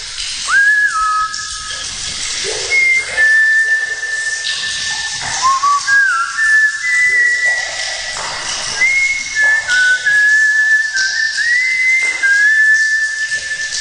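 A person whistles a wandering, sliding tune inside an echoing spring water tank for about fourteen seconds, with a steady rush of spring water hissing underneath throughout as it flows into the tank.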